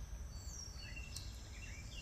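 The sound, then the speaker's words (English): Faint birdsong: several thin chirps and trills overlap over a steady low rumble of background noise, with no voices. “And then tune into the sounds of the lovely choir of the birds here, and then whatever sounds are where you are.”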